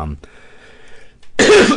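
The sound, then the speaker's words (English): A single harsh, rasping cough bursts out loudly near the end, following a brief throat noise and a stretch of quiet background hum. “Well, that was a nasty cough.”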